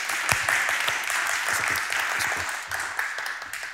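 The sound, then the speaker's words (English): An audience applauds to welcome a volunteer up during a teaching talk about seeking God, many hands clapping in a dense, crackling wash that holds steady for a few seconds before easing off slightly at the end. No one speaks over it. “Let's give a clap to”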